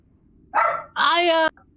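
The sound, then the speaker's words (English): Someone mimics a dog with their voice: two loud barks, a short one followed by a longer, drawn-out one, with silence around them. “That's a different call I heard last time. You sounded like a dog.”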